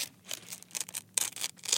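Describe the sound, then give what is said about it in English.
A paper lunch bag, used as an ASMR accessory, crinkles and rustles in a steady run of soft, crackly bursts, quiet and continuous with no one speaking. “using her little lunch bag of paper as an additive for I that.”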